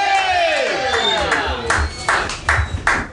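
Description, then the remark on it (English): An audience claps and cheers steadily throughout, with a falling musical tone sliding downward at the start and a few sharper, louder bursts of clapping toward the end. “Ladies and gentlemen, we'll clap one more time for”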